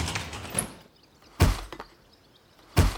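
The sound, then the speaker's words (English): A door at a club is shoved and thuds to a stop against boxes piled up behind it, two heavy thumps about a second apart, preceded by a brief rattling scrape of the handle and frame. “The door won't open. It's like there's something inside blocking it.”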